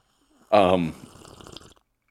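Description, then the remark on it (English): A voiced, breathy burst gives way to a crackly slurping sound, like someone taking a loud, wet sip from a drink for about a second. “Oh, that was a fucking sippy sip, dude.”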